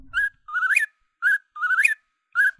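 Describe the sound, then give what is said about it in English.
A whistled call of a whip-poor-will, a nightjar, apparently a human imitation: a short clear note followed by a longer, rising slurred whistle, the pattern repeated twice more in steady rhythm with no talking. “It was a whip poor will, which is a nightjar.”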